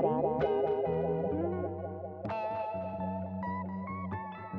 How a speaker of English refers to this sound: I call out again, and the echo gets stranger, distorted.